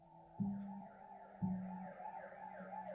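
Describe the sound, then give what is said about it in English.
A police car siren wails in rising and falling sweeps, cut by two low, blaring horn blasts, holding steady with no voices, as police cars drive up the long driveway towards the Castlewood estate, a butler academy in England. “From my window on the top floor, I watched as police cars trundled up the long driveway towards the Castlewood estate.”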